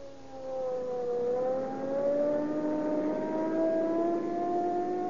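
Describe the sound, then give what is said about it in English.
A police car's siren wails in a long rising sweep as the engine revs and the car, running on Rio Grande cracked gasoline, speeds up from about 5 to 80 miles an hour to answer a burglary call, loud, with no voices. “Now, there we are. 80 miles an hour. Boy, I'll show you what police car performance means.”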